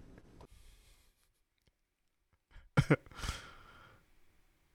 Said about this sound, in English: Bless you. Thanks. I had to sneeze. Sorry.